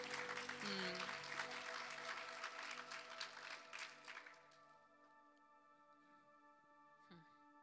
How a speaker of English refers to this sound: Go ahead and give God an applause. He really deserves it.